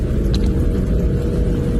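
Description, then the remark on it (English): An off-road vehicle with a stock exhaust, an AEV snorkel, a 2.5-inch AEV lift and 37-inch BFG tires, driven at about 50 miles an hour through desert. Its engine roars steadily with a deep, dense low rumble and a breathy induction whoosh through the snorkel, loud and even, with no voices. “Well, so that was a stock exhaust with just the AV snorkel making all that induction noise.”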